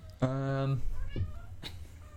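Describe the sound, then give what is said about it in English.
A cat lets out one loud, drawn-out meow, held steady for about half a second, followed by quieter murmuring and faint background voices. “God damn it, cat.”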